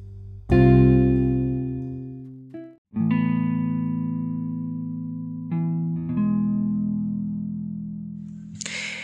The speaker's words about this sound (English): That was an awesome instrumental.